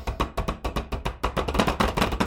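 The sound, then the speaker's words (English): Rapid, repeated banging on a table, a steady run of sharp knocks about five or six per second, loud and percussive with no voices over it. “You hear the banging on the table.”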